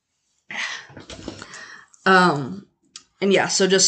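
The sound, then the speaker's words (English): A puppy, Sadie, one of two puppies, whimpers and yips in short bursts wanting attention, after a stretch of scratchy clicking and shuffling, like paws or claws moving around. “Yeah, there are 2 puppies.”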